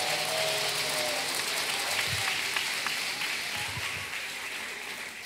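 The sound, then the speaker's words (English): A church audience claps steadily in sustained applause, praising God and congratulating a member's promotion to captain in the sheriff's department: a dense wash of many hands at an even loudness, fading slightly toward the end, with no one speaking over it. “Come on, let's give God a big clap off and a praise.”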